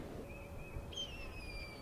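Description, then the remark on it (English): A blue jay mimics a red-tailed hawk call: a faint, drawn-out, hawk-like scream, a thin, high tone that slides slowly downward for about a second, preceded by a quieter whistled note, over a low background rumble. “that's a blue jay mimicking a red-tailed hawk call.”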